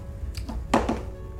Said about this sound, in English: Oh shit, what did you drop? Just a D4.